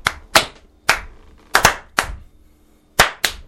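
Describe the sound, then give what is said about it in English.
A brief round of applause: about eight sharp, crisp hand claps in an uneven rhythm, some in quick pairs, with short silences between and no talking. “Round of applause, mate.”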